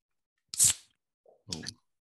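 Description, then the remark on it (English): A can of VB is cracked open: a sharp snap with a bright fizzing hiss, followed after a brief pause by a second shorter crackling rustle. No talking. “Oh, was that a 4X Gold? Mate, it's a VB.”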